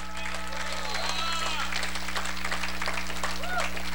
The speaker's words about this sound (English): Somebody give God a better hand clap than that.